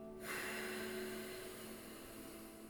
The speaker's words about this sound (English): when you breathe through your nose, you're using the diaphragm to breathe